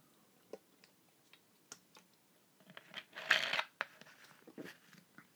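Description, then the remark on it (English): Scattered soft clicks and taps, like a cup or bottle being handled, then a brief, louder slurping sip of water followed by a few more quiet clicks, with no one talking. “I'm going to get a sip of water first, though.”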